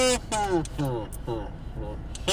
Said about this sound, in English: Well, that's what you get for playing the kazoo.